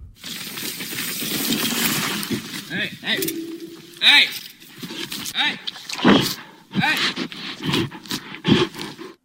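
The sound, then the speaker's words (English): A bear on a trail snorts in several short, rough bursts of breathy noise, while a man holding a mountain bike up over his head shouts "hey" at it intermittently over a steady background rumble; the bear then leaves. “Yeah, you can hear the bear snorting, then the bear leaves because the guy looks big with the mountain bike up over his head saying, hey.”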